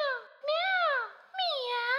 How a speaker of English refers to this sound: There's no sign of the little kitty anywhere. But just then came the sound of a faint meow.